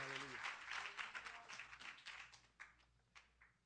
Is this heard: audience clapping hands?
yes